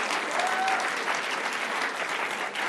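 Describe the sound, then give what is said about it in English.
Sustained applause from a church audience, a dense, steady patter of many hands clapping at an even loudness for the whole stretch, with no voices standing out. “Can I get another round of applause out of you?”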